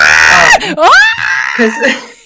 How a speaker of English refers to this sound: Why does he scream?